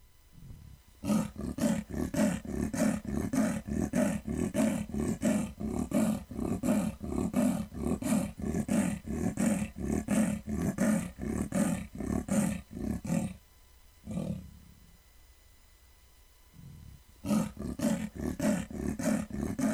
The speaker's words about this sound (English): And hear the sound, the territorial pant of the Amur leopard.